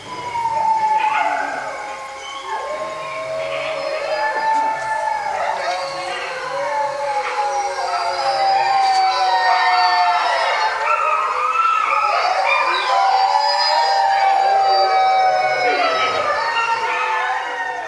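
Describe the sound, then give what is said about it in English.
A pack of timber wolves, a subspecies of gray wolf, howls together, several long overlapping wavering tones rising and falling at once, sustained and fairly loud throughout with no talking. Recorded by Brian Wright for the International Wolf Center CD. “Timber wolves are a subspecies of the gray wolf. They're large wolves that live in packs of up to 20 individuals.”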